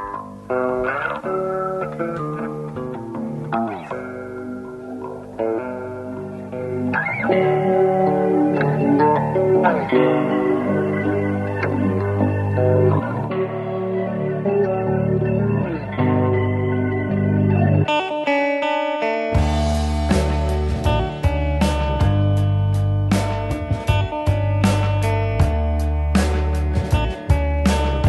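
Electric guitar played through heavy effects, shimmering chorus-like chords and echoing notes, loud and continuous, with a denser distorted wall of sound and rhythmic drums arriving partway through; no voices.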